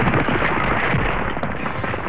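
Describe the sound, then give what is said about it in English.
A loud, continuous avalanche roar reverberating through a valley fills the whole clip, a dense rumbling wash of noise with crackling and crashing textures that stays steady and heavy from start to finish. “And that breath gets louder as it reverberates through the valley until suddenly all of you can hear the loud roar of an avalanche.”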